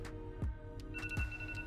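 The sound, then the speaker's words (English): A timer alarm goes off: steady, high-pitched electronic tones ring out with a couple of soft, low pulses, fairly quiet, with no one talking. “And my timer hasn't gone off yet.”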